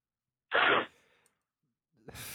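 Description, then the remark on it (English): A loud, harsh nasal snort of cocaine by John C. Reilly, about half a second long, fades out. After a quiet pause a second breathy, hissing sniff begins at the end. No one speaks. “So that is the John C. Reilly sniffing some cocaine.”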